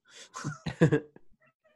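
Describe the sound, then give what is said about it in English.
A cat meows several times in quick succession, short insistent calls, followed by a brief faint squeak and quiet. “You were a very needy cat.”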